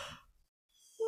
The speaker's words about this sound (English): We're both yawning. I know. Go hard. Everybody's yawning at this podcast.